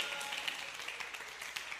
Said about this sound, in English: Give the Lord a clap.